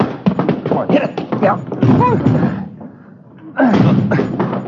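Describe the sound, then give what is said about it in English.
Heavy thuds of people ramming a front door blocked by something piled against it, several blows in quick succession, with shouting voices in between and a brief lull before more banging. “Hit it. Come on, hit it again.”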